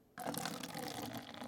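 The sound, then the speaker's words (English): A canned drink is poured, starting abruptly after a brief hush and continuing as a steady, fizzy gush of liquid with no one speaking. “Wait, listen to the pour.”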